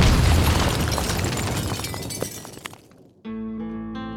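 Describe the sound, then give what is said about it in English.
Stauffenberg's briefcase bomb explodes in a conference room at the Wolf's Lair at 12:42: a loud, low roar with shattering, crackling debris that fades over about three seconds, then gives way to a steady, sustained tonal sound. “But at 12:42, the bomb still ripped through the conference room.”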